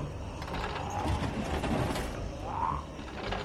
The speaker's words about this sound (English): With just a few turns of the crank, he's able to get a pretty good-sized gap.